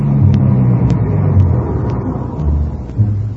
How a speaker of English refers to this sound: A few minutes later, Mr. Sullivan came out, got in the car, and we drove off.